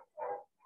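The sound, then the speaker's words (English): Faint howling of dogs outside: a single brief tonal wail lasting about a quarter second, followed by a softer short cry. No one speaks. “I'm so sorry if you can hear my dogs in the background.”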